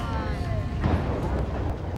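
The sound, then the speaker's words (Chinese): Dense, rapid crackling bursts of firecrackers being set off, a continuous loud popping rattle with a voice briefly audible at the start. “昨天是比较多人放鞭炮了，我们也来就可以偷看。”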